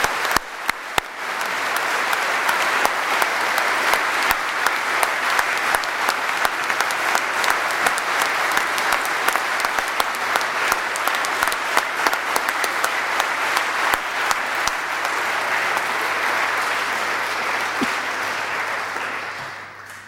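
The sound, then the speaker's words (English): A large crowd claps steadily for about twenty seconds at a presentation for the Diploma in Ministry Diaconal Studies, a dense, even wash of many hands with no voices, holding at a fairly loud level before easing slightly at the end. “I think a warm round of applause is now called for.”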